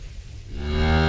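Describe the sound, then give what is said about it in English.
A low, deep rumble gives way to a loud, rich, droning bellow of a hippopotamus that swells and holds through the end, resonant, with no talking. “It's a hippo.”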